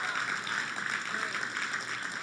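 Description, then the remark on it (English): An audience claps together, a dense, steady wash of many hands with a bright, hissy texture that stays loud and even for a couple of seconds, with faint voices mixed in. “Come on, clap today if you're down to be somebody that's looking for things to pray about.”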